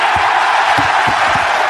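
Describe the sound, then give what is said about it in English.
A large crowd cheers and roars in a steady, dense wash of noise, loud throughout, with a few deeper shouts rising out of the din. “And that's everyone cheering, right?”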